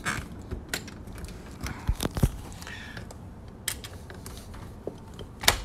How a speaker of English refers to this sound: Trying to open this door. Okay, so we're talking about the fabric of reality, and I can't get out.